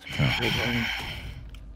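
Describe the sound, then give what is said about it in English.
Heavy breathing: a long, forceful breathy exhale with a slightly voiced, sighing groan, fairly loud and heard alone before trailing off. “breathing heavy.”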